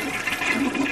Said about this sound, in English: It broke three dishes and a cup, and now the toilet is backing up all kinds of water and bubbles all over the floor. See, I flush it. I flush it, and now all the water comes up.